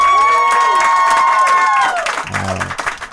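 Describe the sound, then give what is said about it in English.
A comedy show audience bursts into loud cheering and steady clapping for comedian Rory Eustace at the end of his set, with a long, high-pitched whoop ringing over the applause before it breaks into scattered shouts and continued clapping. “Let's hear it one more time for Rory Eustace, everybody.”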